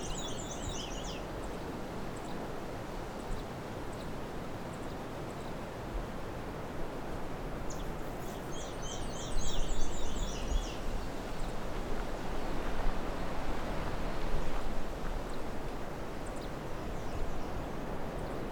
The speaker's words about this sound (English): Those ticking sounds are probably the black-throated blue warbler calling.